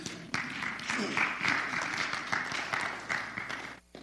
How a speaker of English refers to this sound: You can clap. That's good.